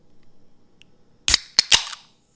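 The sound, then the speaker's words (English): A can of High Noon vodka soda with a hint of pineapple is cracked open: a sharp, loud snap, then two quick pops and a short fizzing hiss, all following a stretch of near silence with a faint low hum. “So I'm just going with a simple High Noon vodka and soda with the hint of pineapple.”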